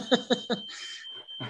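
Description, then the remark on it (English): A smoke alarm, set off by burnt toast, sounds as a thin, steady high-pitched tone running beneath three quick bursts of laughter and some muffled voices. “… just burnt some toast.”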